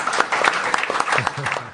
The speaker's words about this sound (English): Guys, you guys have been fabulous. Just give yourselves a round of applause for our guests.